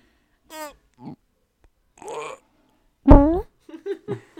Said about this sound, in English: Let me get my fart. Hold on. Hold on, I have another one. I have another fart that I can push.